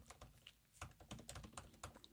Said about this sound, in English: You're just typing it in.